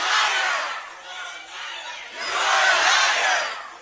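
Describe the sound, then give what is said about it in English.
A crowd of pro-illegal immigration protesters shouts and yells together in a loud, sustained roar, shouting down Nancy Pelosi, swelling in two waves with a brief dip between them, with no single voice standing out. “Nancy Pelosi getting shouted down by pro-illegal immigration forces.”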